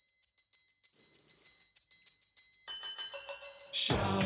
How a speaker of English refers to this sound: Right away with the triangle.